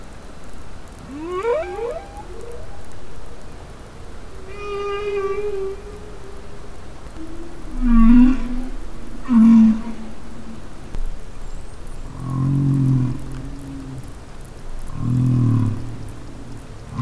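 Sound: whale song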